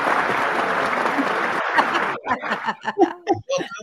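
A crowd claps steadily in a dense wash of applause for about two seconds, with a few chuckles mixed in, then it fades as a voice begins talking.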